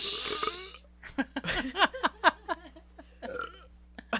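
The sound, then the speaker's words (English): Someone tries to burp, making a string of short, strained throaty gulps and croaks over a few seconds after a brief breathy rush, with no clear belch coming out. “I tried. I haven't been able to burp this whole time.”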